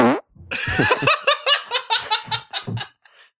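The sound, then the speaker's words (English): Recorded farts play back to back: a long wet rasp, then a rapid string of short sputtering bursts that trails off into a faint squeak, loud with no talking. “All right, play your farts back to back, babe.”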